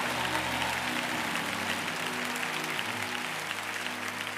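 audience clapping hands

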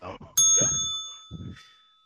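bell ringing ding

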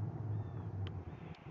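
birds calling outdoors

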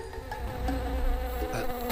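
bees buzzing

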